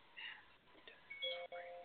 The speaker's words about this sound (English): Look at that. Bell going up again.